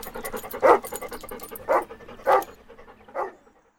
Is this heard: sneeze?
no